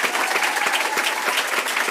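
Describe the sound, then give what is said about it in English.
A room full of people clapping steadily at a school district meeting, a dense, continuous patter of many hands with no voices standing out. “Let's give a big round of applause again”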